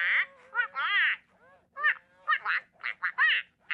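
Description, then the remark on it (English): A robotic Aflac Duck toy, designed for children being treated for cancer, quacks repeatedly in quick, uneven bursts, bright, nasal and loud, with brief pauses between clusters of quacks and no talking over it. “When the child attaches the port and the duck goes quack, quack, quack, quack, quack, quack, quack, quack, they say, well, what do you think the duck just said?”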